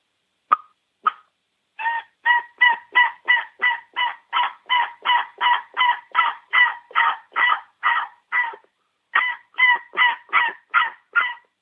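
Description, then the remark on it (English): A wild turkey hen's assembly yelp, calling her scattered young: a long, steady run of loud, evenly spaced raspy yelps after two quick clicks, with one short pause before the series resumes. “So that's the old hen assembly right there.”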